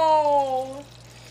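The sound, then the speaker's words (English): A short pour of liquid from a bottle, a clear ringing tone that slides downward for under a second over a low steady hum, then fades. “We go ahead and pour it up, sister.”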